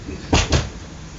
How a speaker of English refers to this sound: Close the door here.